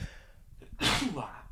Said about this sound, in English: And I think there might be a sneeze coming.